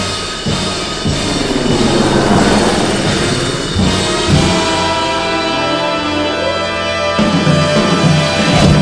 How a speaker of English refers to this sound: The other 49 states, when you hear a helicopter, bad news, sister.